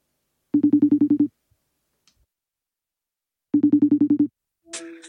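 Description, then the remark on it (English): A phone rings twice in a trilling electronic burst pattern, each ring a rapid series of pulses, with a pause between, then a brief click-like sound as the line seems to pick up. “And then it was just a question of hoping that he answered his phone.”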